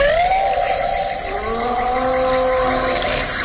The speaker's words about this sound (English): Cue the dinosaur sound, please.